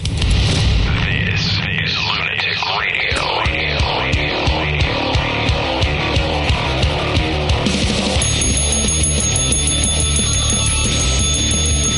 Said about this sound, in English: That's not annoying. I love the sound of the bell.